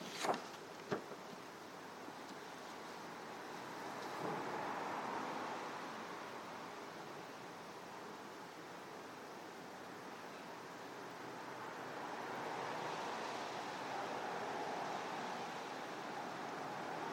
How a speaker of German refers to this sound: Wir hören das Geräusch von den Autos da draußen.